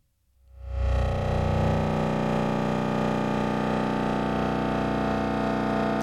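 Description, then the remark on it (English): A modular synthesizer self-oscillating through low pass gates, with outputs going into a 292 and then a 207 mixer: a dense, buzzing drone swells in over the first second, then holds steady and loud, rich in harmonics with a slight wavering oscillation and no voices. “So you can hear that oscillating.”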